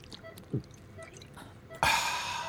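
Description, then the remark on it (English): Liquor pours from a flask, first a couple of soft glugging drips, then a steady splashing stream that runs on until the end. No one speaks. “Have a flask of the good stuff on you. Yeah. Good man.”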